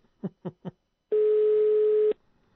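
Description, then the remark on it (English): Three quick, soft pips lead into one long, steady international, non-Australian telephone ringing tone lasting about a second, heard on a call to a local Australian number with an international diversion. The tone is a single flat pitch and clear, with no voices over it. “Because that's not an Australian ringtone.”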